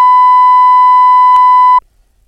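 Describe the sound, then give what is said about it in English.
A loud, steady censor bleep covering a spoken phone number, one unbroken electronic tone lasting just under two seconds with a faint click partway through, then cutting off abruptly into near silence. No voices are heard. “You could beep that. I can beep the beep.”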